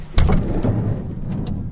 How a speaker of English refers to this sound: I'm going to lead you to it, which means I need to get across here, open this door.